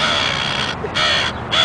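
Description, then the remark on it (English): A harsh, crow-like cawing repeats in two loud bursts separated by brief gaps, with a slightly synthetic, game-like quality and no voices: a flying bird enemy in a video game that drops rocks on the player. “The rock bird of doom.”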